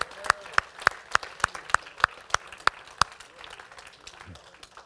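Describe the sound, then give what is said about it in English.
An audience claps in a steady, even rhythm, about eleven sharp beats in a row, then the clapping breaks up into scattered, fading claps and murmuring. “Let's just give the Lord a big clap and thank Him.”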